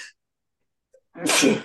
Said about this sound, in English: I sneezed.